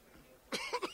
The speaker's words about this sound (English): He's coughing now. You going to make it, pal?